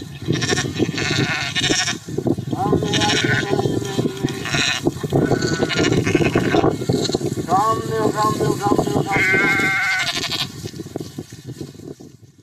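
Several sheep bleat in wavering, drawn-out cries, a few overlapping calls from a flock, loud over a steady low rumble of outdoor background noise.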